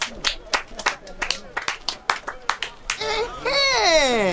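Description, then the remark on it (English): An audience claps for a speaker in quick, uneven bursts of sharp slaps, with children's voices mixed in, then the clapping gives way to loud, rising and falling voices calling out together. “Yourself, how you see them now, as you talk about language where all of us understand, see as everybody they clap for you now.”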